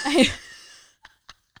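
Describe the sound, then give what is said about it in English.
One sharp, explosive cough bursts out and trails off quickly, followed by three faint, brief clicks spaced out in the quiet that follows. “That's like worse than screaming bomb. Yeah. Coughing.”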